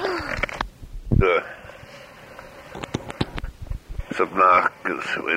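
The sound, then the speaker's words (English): A tape recorder clicks on with sharp mechanical clicks at the start of an old tape, followed by a sudden breathy gasp from a woman; a few more clicks and short wordless vocal sounds follow over tape hiss. “This is how that tape you just heard actually begins, with the sound of a tape recorder clicking on, and then a mysterious gasp.”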